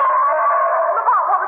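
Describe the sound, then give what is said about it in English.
A gorilla roar: one loud, sustained howling cry lasting about a second and a half, steady and raspy with a slight waver near the end, with no talking over it. “It sounded like a live gorilla.”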